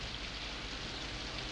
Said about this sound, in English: Say, when'd you guys come in out of the rain, huh? Rain.